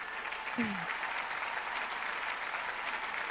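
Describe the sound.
Steady applause from an audience, a dense, even wash of clapping that holds at a fairly loud level for the whole stretch, with a brief voice-like tone rising near the start.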